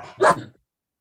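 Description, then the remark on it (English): A single sharp, loud dog bark, bursting out briefly before trailing off into silence. “Second, my dog's freaking out.”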